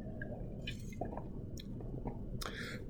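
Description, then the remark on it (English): Quiet sips and swallows of water during a water break in a talk, a few wet gulps and soft mouth clicks spaced irregularly over a low steady background, with no talking. “And so time for another water break.”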